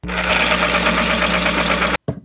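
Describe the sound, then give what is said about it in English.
An X-Acto brand electric pencil sharpener with auto stop grinds a Dixon Ticonderoga No. 2 HB standard pencil with a steady, loud motorized buzz and a rough scraping texture for about two seconds, then cuts off abruptly, leaving a few faint rustles. “Okay, this is an X-Acto brand electric pencil sharpener with an auto stop.”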